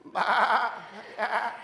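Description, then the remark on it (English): A crowd of people, an audience asked for their best sheep sound, imitating sheep, a loud overlapping chorus of wavering bleats followed by a second, shorter burst of bleating voices. “And I'm just curious, can we make our best sheep sound? Let's hear your best sheep sound.”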